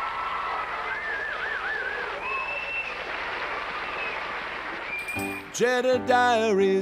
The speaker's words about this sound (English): I miss the crowd's approval. Me too. Well, you know what? As we sign off this week, let's just bask in that rousing applause once more.